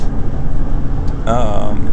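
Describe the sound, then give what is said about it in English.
A person vocally imitates an air horn: a buzzy, wavering, high-pitched blast starts abruptly after a low rumbling stretch and holds loudly for nearly a second until the end. “That's my air horn.”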